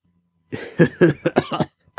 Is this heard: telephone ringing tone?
no